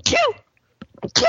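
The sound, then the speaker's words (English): A loud, sharp sneeze with a squeaky, falling, almost bird-like chirp, then a brief pause, a few short voiced sounds, and another abrupt burst at the end. “What, you never heard a sneeze before? I've never heard you sneeze before.”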